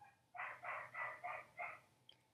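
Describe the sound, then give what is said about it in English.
A female pet dog barks five times in a quick, steady run, the barks evenly spaced and somewhat muffled, with no one talking. “Swear, my dog is being so loud.”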